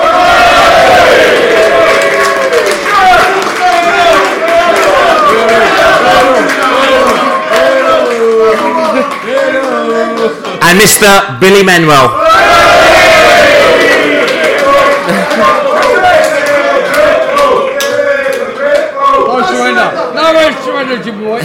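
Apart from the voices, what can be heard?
audience applause and cheering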